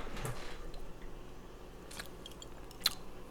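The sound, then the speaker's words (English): Quiet mouth sounds of someone sipping an amber ale: a few soft, brief slurps spaced over a few seconds, with a sharper little click near the end and no talking. “Let's sip.”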